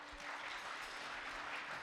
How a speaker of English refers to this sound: Can I ask you to put your hand up? Let's give applause to those.